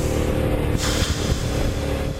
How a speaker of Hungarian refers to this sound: Visszaváltás, rotyogás, az mindig jó.